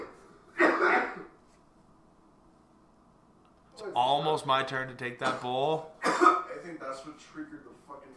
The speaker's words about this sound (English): I think that's what triggered the fucking dab coughs. Oh, he got delayed dab coughs? Is that what's hitting? It's like deep bass lung.